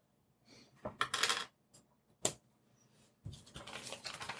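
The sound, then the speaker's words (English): Dice clatter across a hard tabletop in several bursts as players roll spot checks: a quick rattling tumble, a single sharp click, then a longer scattered rolling rattle. Fairly loud, with no voices. “You guys can roll me spot checks.”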